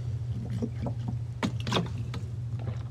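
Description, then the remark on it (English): Someone drinks water, with a few sharp crinkling bursts from the bottle and soft gulping sounds over a steady low hum, and no one speaking. “I don't remember exactly, but let me drink my water real quick.”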